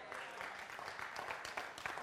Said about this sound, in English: Only part of you are clapping right now.